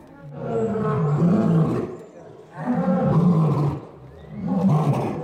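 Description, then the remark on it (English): A lion roars three times in a row at the Wild Animal Sanctuary in Colorado, on a chilly, sunny afternoon with a little snow on the ground. Each deep, rumbling call swells loudly for over a second before fading, with short pauses between them. “Pat's taking us over to an area where a few lions are kept in smaller enclosures, most for just a short time so that they can slowly acclimate to their new home.”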